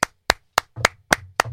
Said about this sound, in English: That's knocking, not clapping. Get all the knocking out now, too.